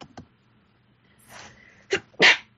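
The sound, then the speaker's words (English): A loud sneeze: a breathy inhale builds up, then a short catch and a forceful burst of air. No one speaks, and the background is quiet apart from faint clicks at the start. “Bless you. Excuse me.”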